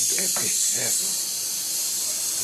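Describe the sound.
A loud, steady sizzling hiss runs unbroken through the whole clip, with a brief murmur of voices underneath during the first second.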